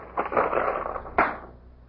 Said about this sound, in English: What are those? The keys. What keys? To this room. To this room? Of course.